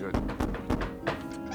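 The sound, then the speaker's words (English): Several firm knocks on the wooden door of a decrepit windmill, four hollow thunks in a quick, even rhythm, with a low hum beneath and a brief softer sound trailing after. “Warren goes up to the door and he knocks on the door.”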